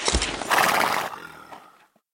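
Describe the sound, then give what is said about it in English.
A horse whinnies loudly, a single shrill neigh that rises, wavers and trails off over about two seconds, with a faint snort at the end and no talking. “Here, I'll see to your horse.”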